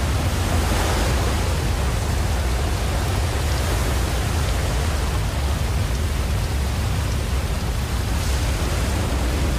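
A steady, dense rush of water falling at a waterfall roars without pause, loud, its broad hiss filling the whole stretch with no voices or other sounds.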